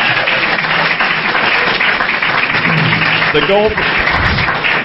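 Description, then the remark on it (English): Sustained audience applause fills the space, a dense, steady wash of clapping with some faint voices and cheers mixed in near the end. “Can I have a round of applause for our advertisers?”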